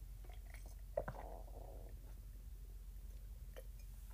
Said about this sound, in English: Oh, a sip of coffee time. Hang on.